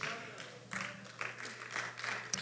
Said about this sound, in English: Thank all 1, 2, 3, 4 of you for clapping.